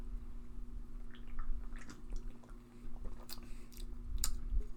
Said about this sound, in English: All right, let's have our first sip to find out what we think.